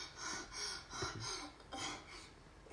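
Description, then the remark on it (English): A woman breathes heavily and raspily in a quick steady rhythm, about five hard breaths in a few seconds, fairly quiet, with no talking. “She is breathing hard.”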